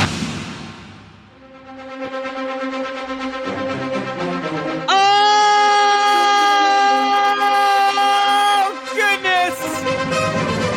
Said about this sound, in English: Breaking news siren.